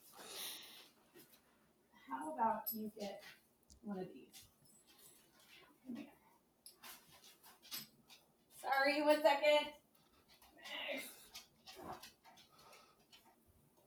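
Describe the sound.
Dogs whimper and give short barks, with a high whiny burst near the middle, while a person speaks softly in between.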